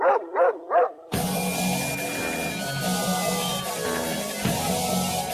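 A dog gives three loud barks in quick succession, then a burst of loud, full-band music cuts in and plays to the end.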